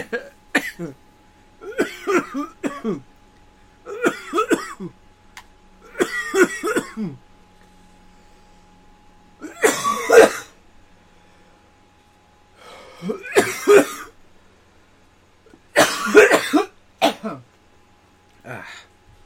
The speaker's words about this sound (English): I popped my headphones off for a second to cough. Because you know how sometimes when you have your headphones on, there's a little more pressure on your ears.